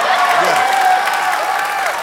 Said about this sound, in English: Those people have been holding that clap.